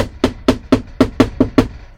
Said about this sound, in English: Who is there? Somebody knocking on my door.